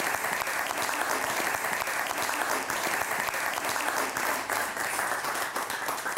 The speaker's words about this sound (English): But right now, without any further delay, let's have a big round of applause and bring Carolyn to the stage.